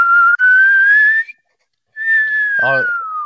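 A whistle flute plays two long sustained notes, the first sliding slowly upward and the second gliding down after a brief pause, with a short low vocal-like burst near the end.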